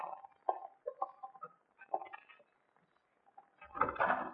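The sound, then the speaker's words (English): A handle rattles and clicks in a few small, quiet jiggles, followed by a fuller scrape and thump as an unlocked back door swings open. “Yeah, the door's not locked.”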